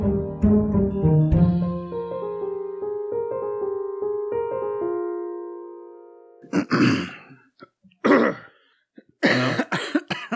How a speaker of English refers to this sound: Dueling coughs. Sorry, I'm just all phlegmy.